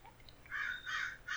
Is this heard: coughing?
no